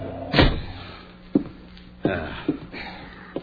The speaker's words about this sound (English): Kick the door shut.